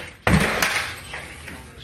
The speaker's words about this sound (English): The deputies smash the door open using a battering ram.